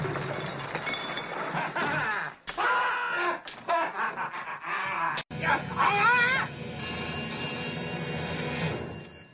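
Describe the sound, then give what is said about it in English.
A telephone rings through a dense, busy mix of warbling electronic tones and clattering noise, with a sustained high-pitched ring toward the end, fairly loud and continuous. “The phone is ringing.”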